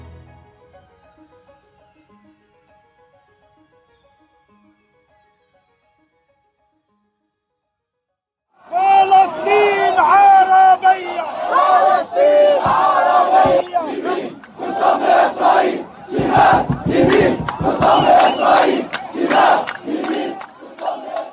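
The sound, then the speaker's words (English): After several seconds of near silence, a huge crowd at a mass demonstration over the war in Gaza erupts into loud chanting in unison, many voices shouting together in forceful, rhythmic bursts that keep repeating. “The war in Gaza has provoked mass demonstrations across the Muslim world, with huge crowds turning out in capitals as far apart as Jakarta, Cairo, and Istanbul.”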